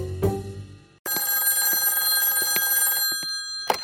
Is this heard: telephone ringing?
yes